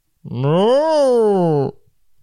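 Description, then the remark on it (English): A person imitates a ghostly cow, moaning in one long, loud, wavering note that rises in pitch, then slowly falls before cutting off, with no other sounds alongside. “Then you hear a ghost cow.”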